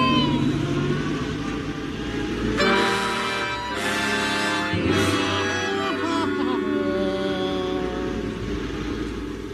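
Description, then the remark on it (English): A refrigeration van's engine revs loudly and the vehicle pulls away and bumps along in 120-degree heat, a steady low rumble with rising, shifting engine tones and a few rattling bursts, continuing throughout. “As the refrigeration van bumped along, folks, the heat outside was 120 degrees.”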